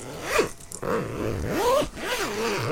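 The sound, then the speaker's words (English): A zipper is pulled several times in quick, rasping strokes, fairly loud, with short pauses between the runs, like a jacket or bag being zipped. “It's a zip. Zipping up a jacket or a bag.”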